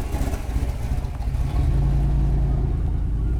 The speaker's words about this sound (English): Muscle car. That was my day at Baker Beach.